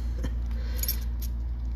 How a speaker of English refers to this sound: I mean, somebody who's done magic tricks before likes the feeling of actually riffling the cards so I can mix them properly. Well, properly in my book.